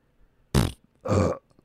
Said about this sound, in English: Muffin burp.